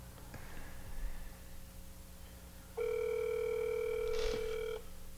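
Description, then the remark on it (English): A steady electronic ringback tone on an outgoing phone call to a nephew sounds for about two seconds, loud and clear, with a fainter earlier tone and brief clicks in the quiet background before it. “Who we call now?”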